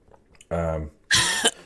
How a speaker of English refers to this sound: Blowing out my earphones over here. I thought I hit the cough button. You did not. Oh, sorry. See, I hit it, but it didn't work. Sorry, guys.